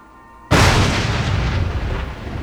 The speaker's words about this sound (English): Eve jumped at the sound of the thunder.